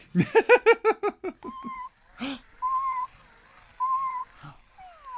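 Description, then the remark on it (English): A battery-powered toy cat, set walking with a button, lets out a quick string of short, synthetic meows, then a clunk and a few steady electronic tones, clear with no one talking. “Find the button that makes kitty walk.”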